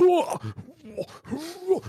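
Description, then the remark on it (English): A person imitates their own cat retching before it vomits, as heard at around 2 a.m., making a series of strained, gurgling groans that rise and fall in pitch over a couple of seconds. “There's nothing worse because we have we've got our cat, and there's nothing worse than hearing this at like 2 a.m.”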